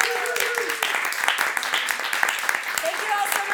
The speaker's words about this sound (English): And let's clap for our guest,